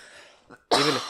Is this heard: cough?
yes